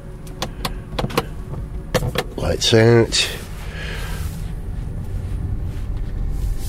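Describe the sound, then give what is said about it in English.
A few sharp clicks and a short whirring motor give way to the steady, low rumble of a car moving off and driving out of a car park, heard from inside, with a brief spoken remark. “We navigate our way out of the car park.”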